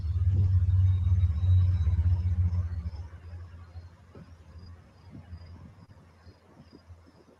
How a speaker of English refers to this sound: All right, ready? See, it's a busy road. You telling me no cars came by that whole time? Give me a break.